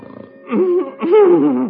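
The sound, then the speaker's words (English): Loud human snoring by John Bickerson in The Bickersons: a soft intake, then two drawn-out, rumbling, throaty snores, the second longer and louder, with a growling, almost roaring quality. “It's that horrible snoring.”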